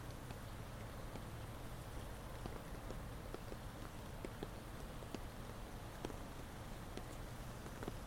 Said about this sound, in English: The thunder's getting closer. Are you afraid? You should be. I'm always afraid of it, especially at night. There's something so unnerving about rain at night, isn't there?